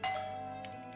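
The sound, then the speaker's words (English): A house doorbell rings once with a bright, struck chime that sustains and slowly fades over about a second, its clear ringing tone standing alone with no voices. “It was in this house, and they rang the doorbell.”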